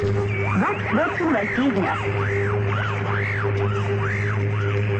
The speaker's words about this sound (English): Knew it because of the expensive and elaborate measures the Russians took to jam those broadcasts, to ring down a curtain of static. Listen.